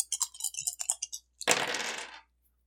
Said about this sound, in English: Roll your dice.